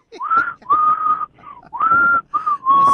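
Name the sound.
loud human whistling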